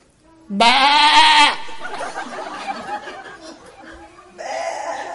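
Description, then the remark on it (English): A person loudly imitates a wavering goat or sheep bleat, followed by muffled laughter and chatter, then a second, softer bleat-like sound near the end. “who's going to be able to tell if that's a goat or a sheep?”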